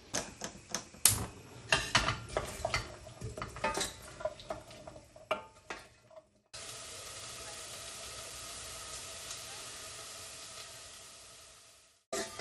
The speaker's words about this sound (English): Okay, so I've chopped up the bacon, chopped all the onion. So next is going to be the chicken livers. Right, okay, so that's the chicken livers in. That's the onion in the pan as well. Now I'm just going to add the bacon.